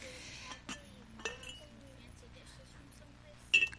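Delicate fancy dishes, among the fanciest in the house, clink against each other a few times as they are handled, with sharp ringing taps around a quiet stretch and a brighter cluster of clinks at the end.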